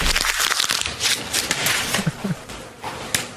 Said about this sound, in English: Sound coming in my ear. This stupid hammering.